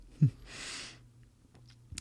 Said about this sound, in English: Chew it. I like your chewing.